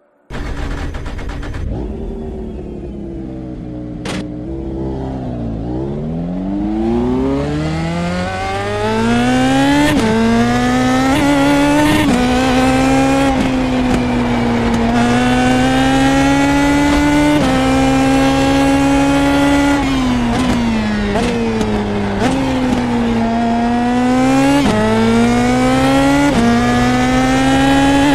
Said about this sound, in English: Let's jump into a 2017 Indy Pro Mazda for a lap around the storied Brands Hatch circuit and let the engine notes be the music.